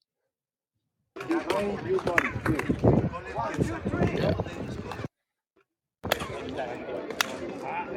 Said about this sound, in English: So that if you at the bottom of the stairs to Chichen Itza, they you can clap your hands and it sounds like ricochets. See if you can hear it.